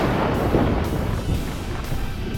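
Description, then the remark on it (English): Thunder roars and rolls in a deep, continuous rumble that echoes within ancient stones, staying loud for the whole stretch and swelling slightly without any sharp crack. No voices are heard. “Thunder roared and rolled and echoed within the stones as the air swirled into a vortex of darkness with Millicent at its center.”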